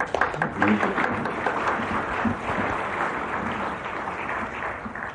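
An audience breaks into sustained applause, many hands clapping in a dense, steady wash that starts strongest and gradually eases over about five seconds, with faint voices underneath.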